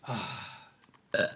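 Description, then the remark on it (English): A person vocally imitates a loud, drawn-out belch, burped in someone's face, a rough rumbling burst lasting most of a second, followed by a few faint breathy sounds and a short sharp vocal blurt at the end. “And he goes and goes, and he burps straight, like large, like brrrr, belch in your face.”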